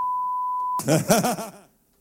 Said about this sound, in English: I didn't even hear the beep.